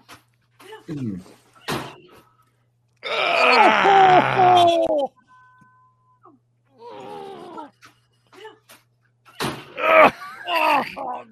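A person, caught on a Ring camera, groans and yells in pain into a bed, with a long, loud strained cry in the middle followed by several shorter pained grunts and moans, plus brief sharp thuds.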